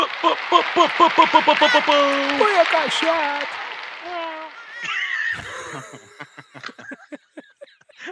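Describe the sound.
A person's voice mimics a cat, making several drawn-out, wavering meows that rise and fall in pitch, followed by a few shorter, softer vocal sounds.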